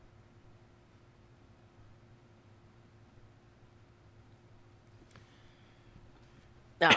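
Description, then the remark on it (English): Near-silent background hiss with a faint tick partway through, then one sudden, loud cough bursts out at the very end, cut off abruptly. “Well, I hope the normalizer and the compressor breaks that cough, because I tried to stifle all of them, but didn't get that one.”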